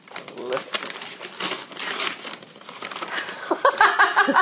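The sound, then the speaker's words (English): Crinkly bursts of lovely gift wrapping paper being torn open and scrunched from an immaculately wrapped present containing a book, in several rough pulls, with voices and a bit of laughter coming in toward the end. “Now, I've got, as I'm sure you'd all be aware, I've got this immaculately wrapped three presents with a lovely paper. Open that one first.”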